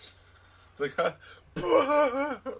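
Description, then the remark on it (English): A person's wet gagging fit from a gag reflex: short choked bursts followed by a longer strained, retching throat sound with a rough, phlegmy edge, heard alone without talk. “I had a weird moment of, like, gag reflex.”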